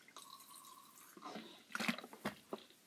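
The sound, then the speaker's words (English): A person drinking water, with a few quiet sips and wet gulping swallows spaced over a couple of seconds against near silence. “And I think, oh my god, I'm so sorry, I need to drink some water, hold on.”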